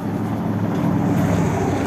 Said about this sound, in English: There was a truck right now driving by, and it had like 5 people on the back.